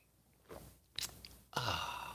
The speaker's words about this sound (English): I like coffee. And join me now for the unparalleled pleasure, the dopamine hit of the day, the thing that makes everything better. It's called the simultaneous sip.